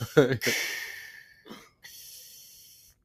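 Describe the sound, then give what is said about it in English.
A voice imitates heavy, mask-like breathing up close: a harsh hissing inhale, a short pause, then a long, steady, rasping exhale, with a brief vocal sound at the start. “I just don't want to breathe like Darth Vader.”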